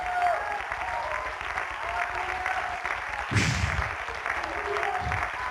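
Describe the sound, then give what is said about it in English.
An audience claps their hands steadily to thank God, a dense wash of many hands with a louder burst partway through, while murmured voices sit underneath. “Come on, clap your hands and thank God you're anointed.”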